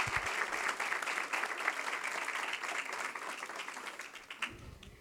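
An audience breaks into steady applause, a dense wash of many hands clapping that holds for several seconds before tapering off at the end.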